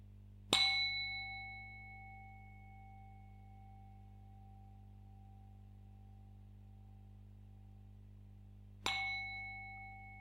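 A meditation gong is struck twice, about eight seconds apart, each strike ringing out with a clear, long-sustaining metallic tone that slowly fades over a faint steady background hum. No one speaks.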